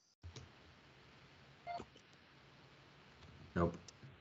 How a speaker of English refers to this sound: I feel like the sound didn't put sound. I heard like the first part of it, but like the beep, but that was it.